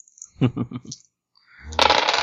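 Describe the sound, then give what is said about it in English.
A handful of dice, a doubled dice pool, clatter onto a tabletop in a loud burst of rattling clicks, preceded by a few softer knocks and shakes. “Double in your dice pool, go for it. Oh, more dice!”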